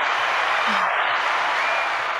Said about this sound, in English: Yeah, that was some applause for him.